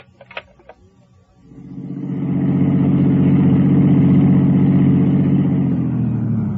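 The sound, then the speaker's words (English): A few faint clicks, then a car engine rumbles to life and runs loud and steady as the car is parked, its low throb holding nearly to the end with no voices. “I parked my car, went on upstairs, opened the door”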